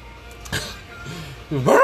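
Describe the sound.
A man staying in character as a dog imitates a dog barking: a brief yip early on, a low whiny murmur, then a louder, drawn-out bark-like yelp at the end.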